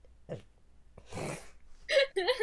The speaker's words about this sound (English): I'm sorry, I just burped in response.